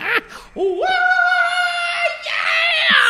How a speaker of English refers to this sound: Stop with that yell, that rebel yell. No, that was more like, yeah, that's rebel yell.